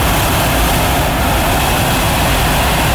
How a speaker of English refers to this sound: This noise that you're hearing behind is the hot air balloons all getting set up. So you can hear all the fire going in. And it's amazing. They light up every now and again with a burst of flames.